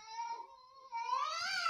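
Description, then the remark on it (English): A cat lets out a long, drawn-out meow that rises into a strained, wailing yowl, fairly loud, with no one speaking. “Did he get hit by the cat?”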